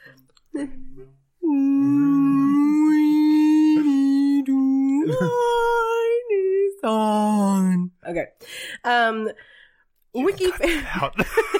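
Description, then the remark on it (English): A human voice imitates a wailing whale with a long, loud, sustained moaning tone that rises and bends in pitch, followed by shorter warbling cries and some breathy vocal noise. “It has to sound like a whale when it wails.”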